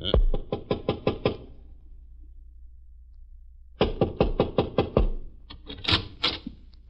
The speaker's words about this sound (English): Want me to knock? Sure.